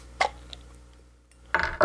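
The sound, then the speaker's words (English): A 22-ounce bottle of triple IPA beer (11% alcohol by volume) is cracked open: a sharp metallic click and a faint tick, then a pause before two loud bursts of fizzy, hissing noise. No one speaks. “So I'm going to crack that.”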